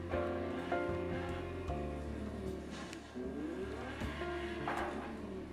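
A sports car engine roars steadily in a video game, its pitch climbing and dropping through gear shifts, with a brief tire squeal and no voices.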